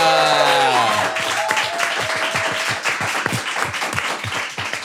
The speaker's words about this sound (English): An honour to say that we are joined by the world's number one chef. A round of applause, please, for Massimo Bottura.